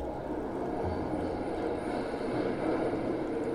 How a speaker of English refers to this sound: One can hear the sounds of the train rattle past David's window.